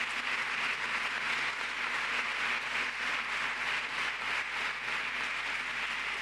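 A crowd applauds in a steady, sustained round, dense overlapping claps that hold an even level for about six seconds without anyone speaking.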